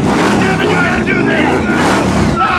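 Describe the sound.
A car engine roars loudly and close, revving hard as it accelerates, with a dense, continuous mechanical drone. Voices seem to be mixed in beneath the engine noise.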